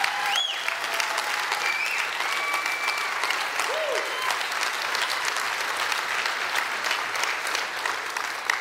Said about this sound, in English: Now, you make a statement like that in church 50 years ago, 30 years ago, people wouldn't be clapping. And look at y'all. Everybody claps because we know the need, especially young ladies, especially young single women.